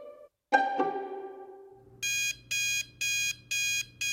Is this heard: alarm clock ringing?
yes